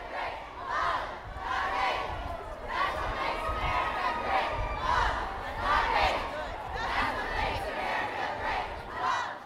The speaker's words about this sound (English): His presence evoked a negative reaction from the crowd. However, the booing quickly turned into a chant with quite a different tone.